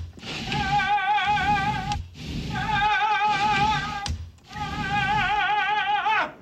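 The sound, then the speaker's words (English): A balcony door of double-pane soundproof glass opens and shuts three times in a row, each swing carrying a long, wavering high squeal, with sharp thunks between the swings. No one speaks. “So he's opening and closing the door on the balcony.”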